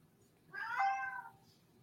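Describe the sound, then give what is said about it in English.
A single drawn-out meow from a female cat, rising and then falling over roughly three-quarters of a second, with no talking. “I don't know if you can hear the cat, but she's excited about today.”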